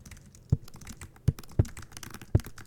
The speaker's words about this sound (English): It's a folder I thought I had completely buried in here. It's all the keyboard clicking and microphone bumps I've cut out of episodes of our show.